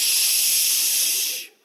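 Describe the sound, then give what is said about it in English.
A single sustained shushing sound from a person, a loud, steady breathy hiss lasting over a second before cutting off abruptly, with no talking. “Deer can hear everything but me doing this.”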